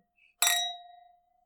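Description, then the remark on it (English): Two glasses clink together once in a toast, bright, leaving a clear ringing tone that fades away over about a second in otherwise quiet surroundings. “Cheers. Cheers for the start. Cheers to that.”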